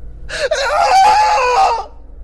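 A man lets out a single piercing scream, loud, held for about a second and a half with a brief catch near the start before cutting off sharply, as he falls to his knees.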